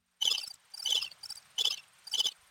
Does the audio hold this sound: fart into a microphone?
no